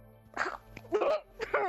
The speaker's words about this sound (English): starts coughing loudly in the background.